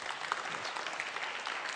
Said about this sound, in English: A couple weeks ago, I celebrated my 10-year anniversary. If you guys want to clap, you can. Thank you.